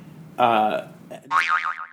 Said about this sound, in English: Gotta beep that.